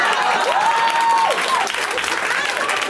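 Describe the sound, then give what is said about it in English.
A crowd applauds the performers at the end of a live show, steadily for three seconds, a dense, even wash of clapping, while a shrill whistle rises, holds and falls early on, with cheering voices mixed in. “Round of applause for everybody you saw tonight.”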